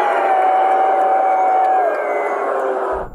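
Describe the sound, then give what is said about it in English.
A capacity crowd at MetLife Stadium roars and cheers in a dense, steady wash of voices for about three seconds, with a high whistle-like whoop riding on top before the noise cuts off. “Oh, the capacity crowd at MetLife Stadium.”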